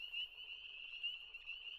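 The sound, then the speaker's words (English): A chorus of frogs croaking together in a steady, unbroken trilling drone, fairly faint, with no voices present. “The wind falls. The mountains are clear. Now the frogs.”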